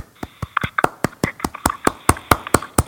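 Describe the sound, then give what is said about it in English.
A group claps hands together in a steady, quick rhythm, about a dozen sharp, even claps in a row with faint background murmur underneath. “I'll do our statements with clapping.”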